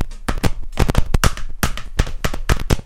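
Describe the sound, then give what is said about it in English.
Quick, sharp hand claps in uneven clusters of two and three, imitating a horse galloping through a forest, beating out a galloping hoofbeat rhythm at a brisk, steady pace, loud and with no voices. “My worst impression of clapping ever.”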